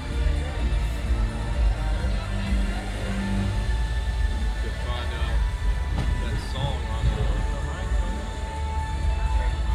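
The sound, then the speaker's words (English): A passenger train of the Disneyland Railroad rolls steadily along the rails, its loud, continuous low rumble and rattling carriage noise filling the whole stretch without a break, heard from on board. “please remain seated all the time, keeping your hands off speed and legs inside the train.”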